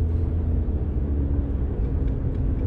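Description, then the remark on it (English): A large truck rumbles by, its deep, heavy engine drone steady and loud for the whole stretch, with no voices over it. “Fucking hate trucks, man.”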